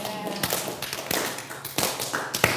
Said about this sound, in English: All right, yeah, let's slow clap it.